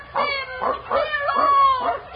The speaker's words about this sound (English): The sound swept closer, the angry, threatening roar of her own dog pack following the trail her abductors had made. They heard her cries now. They were coming closer, an angry gray horde moving with the speed of the wind